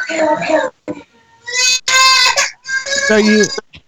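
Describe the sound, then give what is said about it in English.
A child screams during an interview in loud, shrill, high-pitched bursts, two long wails following a short vocal outburst, with brief gaps of quiet between them. “You blowing your nose, the kid screaming.”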